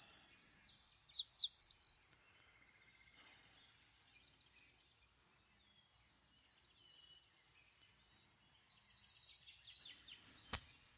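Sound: bird chirping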